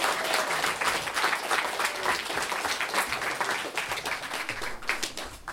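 A room full of people claps steadily, a dense, continuous wash of applause that holds at an even level for several seconds with no voices standing out.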